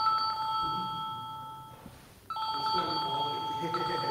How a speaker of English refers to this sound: But example, yeah, this is kind of an alarm, yeah.